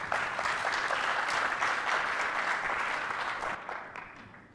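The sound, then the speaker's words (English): An audience applauds two presenters with dense, steady clapping that holds strong for several seconds, then gradually thins and fades out toward the end. “Let's give a round of applause for Eli and Rama.”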